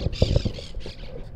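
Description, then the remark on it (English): Monk parakeets, bright green birds native to South America, squawk in a rapid run of harsh, raspy, high calls, four or five overlapping bursts over a steady low rumble, in a park in Texas. “How a bright green bird native to South America wound up in Texas”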